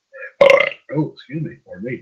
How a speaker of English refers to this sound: A little belch.